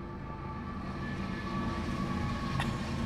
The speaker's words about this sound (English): We should take a shot every time a train passes by and ruins our fucking podcast.